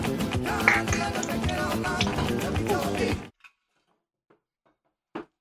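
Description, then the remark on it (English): A cup, already emptied, is knocked over onto a table by someone's elbow: a loud, dense stretch of music cuts off abruptly, followed by a few faint taps and one sharp, hard clack near the end. “I just knocked over the other cup right now.”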